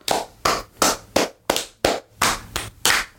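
Steady, evenly paced hand claps celebrating the Washington football team's win and first place in the NFC, about nine sharp loud smacks each with a short ringing tail, roughly three per second, with no voices.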